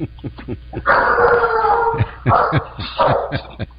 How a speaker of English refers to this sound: We've got dogs. You won't see any judgment over here. We are the dog pound here.